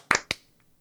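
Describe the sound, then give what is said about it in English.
A sharp hand clap for syncing, heard as two quick, crisp bursts about a fifth of a second apart, then near silence with no talking. “All right, clap sync. 3, 2, 1.”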